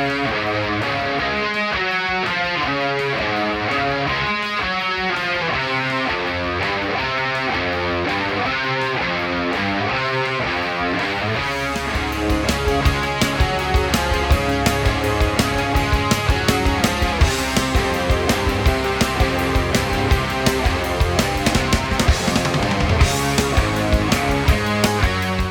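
A distorted electric guitar plays a repeating rock riff of quick stepping notes; about halfway through, pounding drums and fuller low end join and the music grows louder and denser.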